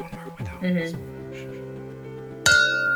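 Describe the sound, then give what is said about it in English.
Glasses clink together in a toast to Tyra Banks, a bright ring near the end that keeps shimmering, following a softer sustained ringing tone and brief voices at the start. “Cheers to Tyra Banks, because we didn't cheers her last time.”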